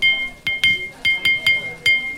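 Metal spoons tapped together to play a song, in an uneven, tune-like rhythm: six bright, ringing clinks, each leaving a short high-pitched metallic tone that lingers between strikes.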